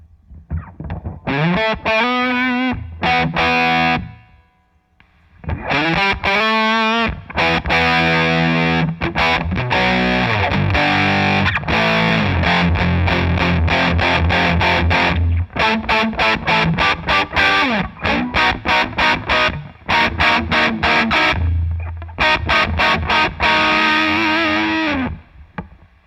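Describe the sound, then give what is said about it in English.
A heavily distorted electric guitar chord rings out through a fuzz pedal with its on/off buzz circuit switched on, giving a buzzy, saturated tone, struck repeatedly and left to sustain, loud with no talking. “I'm going to do that again, but this time I'll kick in the buzz. I'll kick in the buzz circuit.”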